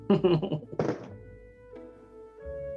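Dice rolled for a persuasion check clatter and tumble across a table, landing a natural 20, in a quick burst of hard clacks lasting about a second, then stop, leaving only a faint steady background hum.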